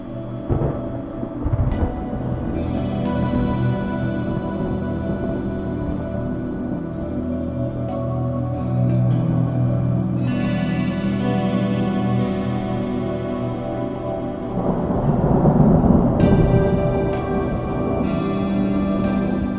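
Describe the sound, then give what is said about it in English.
A thunderstorm with steady rain pouring down and deep rumbles of thunder rolling through, swelling louder near the end. No voices, just the storm filling the space. “Then the storm parts and goes away”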